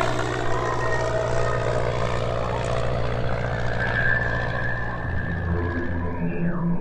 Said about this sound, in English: Even in his rattled state, Danforth was able to get the plane aloft and climb to the altitude of the pass.